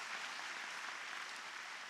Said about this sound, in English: Come on, once again, let's give God a good clap offering. Want to bless the Lord. Amen.